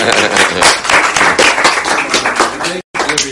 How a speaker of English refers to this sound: So I'm just clapping. That's it.